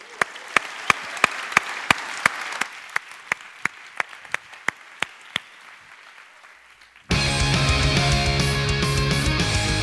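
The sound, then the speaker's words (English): An audience applauds a performer with sharp, evenly spaced claps in a steady rhythm that softens slightly over about seven seconds, then loud music abruptly takes over. “Give it up”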